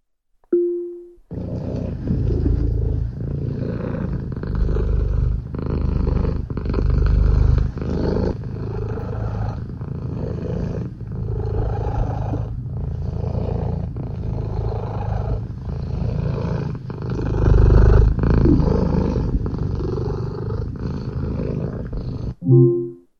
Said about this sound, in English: And it's something that we will occasionally do is just get Alexa to purr.